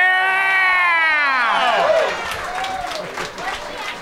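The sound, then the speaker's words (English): A long, falling whoop gives way to a dense burst of crowd applause and cheering that carries on loudly for a couple of seconds. “And that was the most applause Holmes and Watson has ever received.”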